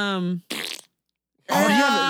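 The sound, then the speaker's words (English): Loud fart sound effects: a buzzy, tonal blast, then a short sputtering burst, a brief silence, and another long, raspy fart to finish. “You need a fart.”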